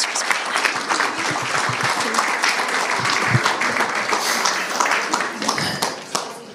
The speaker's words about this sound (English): So shall we give them a clap?